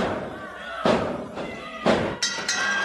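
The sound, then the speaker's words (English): Two heavy, booming thuds about a second apart as a wrestler is slammed down onto a ring mat, over a steady roar of crowd noise. “Powers him down.”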